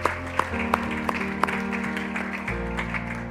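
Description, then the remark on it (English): An audience claps for God at the end of a sermon over sustained keyboard chords, with sharp rhythmic claps standing out at a steady beat in the first half before blending into a softer, continuous patter. “Yes, you can give God a clap.”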